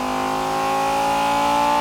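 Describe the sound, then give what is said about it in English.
A car engine, put in gear and driven smoothly up to the redline in a recording session for video game sounds, pulls hard, its steady harmonic whine holding strong as it revs toward the top of its range, loud and continuous with no one speaking. “What they call a ramp, put the car in gear, and drive it smoothly up to the red line.”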